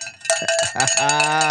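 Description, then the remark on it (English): A cowbell clanks in a quick burst of metallic strikes, several rapid hits followed by a longer ringing tone that sustains to the end, loud and bright. “Break out that cowbell, baby.”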